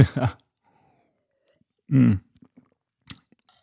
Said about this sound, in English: And, well, let me just take a sip of water.